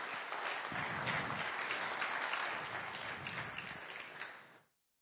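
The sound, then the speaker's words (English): Sustained applause from a church audience for the church's young people, a dense, steady wash of many hands clapping at an even loudness for about four and a half seconds before cutting off abruptly. “Come on, can we clap for them one more time?”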